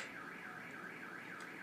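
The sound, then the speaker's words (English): A car alarm wails continuously, its tone sweeping up and down in a steady repeating cycle, loud and constant with no other sounds or voices. “Okay, honestly, it's a ghost trying to steal a car.”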